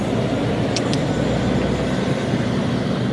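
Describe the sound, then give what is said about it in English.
A steady, heavy low-frequency rumble of lorries driving out of the depot of the logistics company Valet Transport fills the scene continuously, with two brief high-pitched squeaks near the start, like brakes or metal creaking. “A few kilometres away from the Ferme du Puy, at a large logistics company called Valet Transport, Lorries rumble out of the depot while, not far away, sheep nibble peacefully on the spring grass and flowers.”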